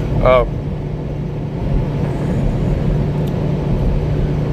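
Steady low road rumble from inside a moving car following another car that is tailgating a semi truck, constant and fairly loud throughout, with a brief high-pitched vocal-like chirp at the very start.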